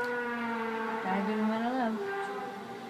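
A steady, eerie siren-like wail, recorded on amateur video in British Columbia, Canada, on August 29, 2013, drones loudly throughout, its pitch wavering slightly upward then dipping before settling back into a sustained, harmonic-rich tone.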